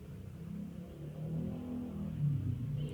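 A police car's engine rumbles low and steady, nearby, swelling into a heavier rev toward the end, with no voices and no siren.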